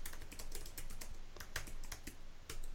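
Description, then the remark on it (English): Rapid, steady typing on a computer keyboard while doing a news search on Google News, a dense run of crisp clicking keystrokes with a few brief pauses, heard on its own without any voices. “Doing a news search.”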